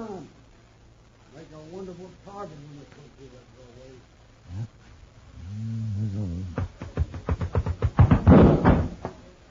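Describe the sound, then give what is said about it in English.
People talk briefly, then a door closes, shutting out the light, with a burst of sharp, rattling clunks and knocks that grow louder toward the end, fairly loud. “There's no light for that door closed.”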